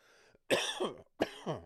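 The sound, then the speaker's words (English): Two harsh coughs about half a second apart, each a sharp burst trailing into a raspy tail, with a faint breathy sound just before the first. “There's the old cough, right?”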